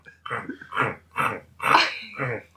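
A dog plays and bites something, making a run of about five short, rough bursts of snorting and growly chewing noises, roughly evenly spaced with brief gaps between them.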